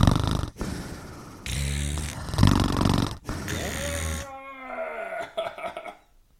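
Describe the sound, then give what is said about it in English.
Loud heavy breathing blasts straight into the microphone in several rasping, snore-like bursts, trailing off into a voiced, sighing groan and a few quieter breaths. “We're letting everyone tune in on your breathing.”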